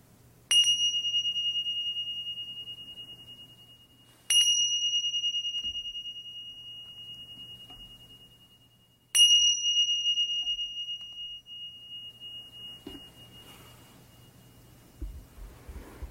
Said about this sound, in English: Now opening ourselves to the three bells, signifying the end of this meditation.